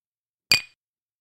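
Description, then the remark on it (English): A single bright, crisp clink of glasses touching together in a toast, with a short ringing tail that fades quickly into silence. “we dedicate this episode of Whiskey and Wonder to you, Betty White. Cheers. Cheers.”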